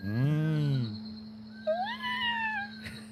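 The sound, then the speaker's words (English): Curlew calls at 2 o'clock in the morning: a loud, drawn-out wailing cry that rises and falls, then a series of thinner upward-sweeping whistles, over a steady low hum. “But look them up, curlew.”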